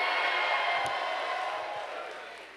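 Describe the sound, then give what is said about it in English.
An audience screams and cheers on being asked to scream, in a dense, sustained roar of many voices that holds steady for a couple of seconds, then eases off slightly toward the end. “Anybody ready to be too blessed in here? Scream.”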